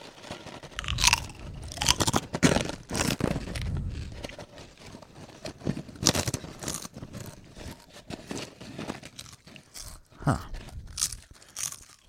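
Loud crunching of Co-Op West Country Cheddar & Red Onion Chutney crisps being chewed, a steady run of sharp brittle crackles and munching bursts with no talking.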